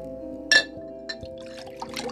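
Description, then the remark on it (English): A glass clinks sharply, then liquid trickles and splashes into it in uneven spurts over a steady low background hum. No one speaks. “Having to pour in this glass, I have to turn from my wicked ways.”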